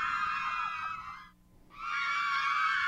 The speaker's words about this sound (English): I didn't know that the kids would start screaming